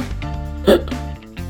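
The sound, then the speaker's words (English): A single sharp hiccup pops out near the middle, short and fairly loud, over a steady bed of background music with no speech. “Now, if you have the hiccups, don't worry.”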